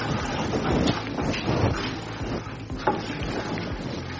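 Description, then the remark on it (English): Water sloshes and swirls steadily in a bucket as 500 grams of chlorine are stirred into 7 liters of water, a continuous churning with occasional louder splashes and knocks against the sides. “Then you mix.”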